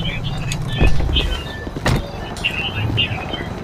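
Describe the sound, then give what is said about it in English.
Automatic sliding doors of a medical station open with a short mechanical whoosh and hum, heard twice in quick succession over a steady low rumble, with faint high chirping tones in the background. “Oh, they're sliding doors. They're not push doors.”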